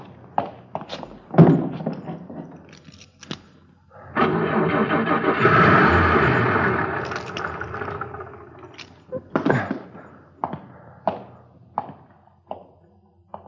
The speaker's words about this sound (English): Lousy car wouldn't start. I'd be 3 miles away if it would have started.